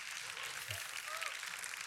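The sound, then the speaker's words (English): An audience claps steadily during a sermon, a dense wash of many hands that stays even from start to finish, with a few faint voices calling out beneath it. “Now, that doesn't mean, yeah, you can clap for that, right?”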